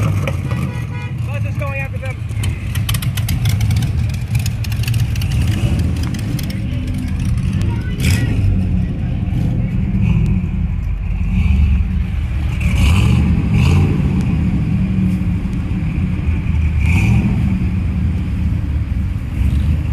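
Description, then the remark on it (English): A bus engine rumbles steadily and loudly as the bus goes uphill, straining with occasional revving and clattering, while faint traffic and a horn toot sound in the background. “The bus is going up.”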